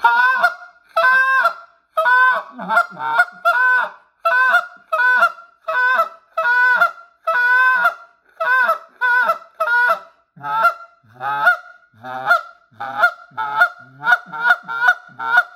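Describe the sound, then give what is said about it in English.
A goose call blown in a spit moan style: a rapid, rhythmic run of loud honks and moaning clucks, about two dozen notes over fifteen seconds, clear with no talking, imitating giant Canada geese. “So that's what I like about this old man, and I'm calling giant geese. So we're going to get going, and I'm going to talk about first see him spit moan.”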